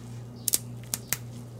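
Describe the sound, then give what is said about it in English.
Dried placenta pieces snap crisply like crackers, four sharp brittle cracks, a quick pair and then two more spaced apart, over a faint steady low hum with no talking. “See how it snaps like that?”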